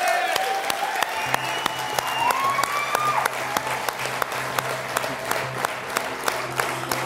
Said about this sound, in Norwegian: Stor applaus for det!